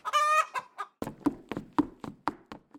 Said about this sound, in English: The chickens have begun their assault. I knew this day would come.